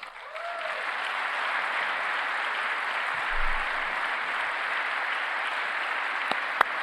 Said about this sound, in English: Clapping for himself. I had to fuck with the audio to make it where it's even listenable because his claps are, it's a giant spike in the audio.